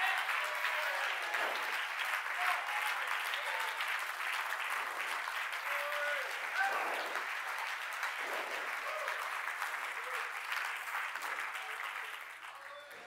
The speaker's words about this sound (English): We ain't just beating our hands for no reason. We're not just saying amen for no reason. We got something to clap about.